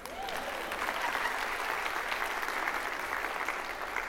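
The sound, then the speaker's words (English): An audience claps steadily for a woman, a dense, even wash of many hands that holds at a moderate level for about four seconds without a break, with no talk over it. “Clap for her.”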